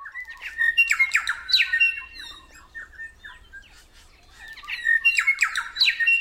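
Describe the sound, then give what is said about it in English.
A New Zealand bellbird (korimako) sings clear, ringing notes mixed with sharp squawky phrases, in two bursts separated by a quieter pause, prominent with no one talking. “So their brilliant songs may ring through forests for years to come.”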